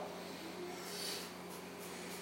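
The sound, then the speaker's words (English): Quick, forceful breaths pushed in and out through the nose during a one-minute breathing exercise with thumbs engaged and fingers pressing into the hands, a few short airy huffs in a steady rhythm over a low background hum, fairly quiet overall. “Thumbs are engaged, fingers are pressing into the pads of the hands, breathing in and out through the nose, forcefully, strong, ready, set, go.”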